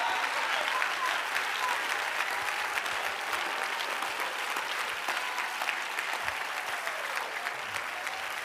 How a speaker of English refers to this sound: Somebody clap your hands to the Lord.